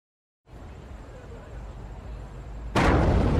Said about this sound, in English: Around 1:40 a.m., an explosion in the Kingston Throop Avenue subway station sends a blast of smoke and fire in all directions.